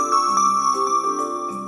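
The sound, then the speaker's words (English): A bell rings in a quick run of bright, repeated chiming tones, each strike blending into a steady shimmering ring that carries on for a couple of seconds with no voices. “Make sure to listen closely for the bell.”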